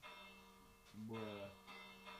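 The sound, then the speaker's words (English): A bell rings with a steady, sustained metallic tone that lingers through the whole moment, while a voice briefly sounds over it partway through. “Oh, that's a bell.”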